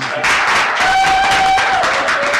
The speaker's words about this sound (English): And so just as, yeah, you guys definitely should clap for that.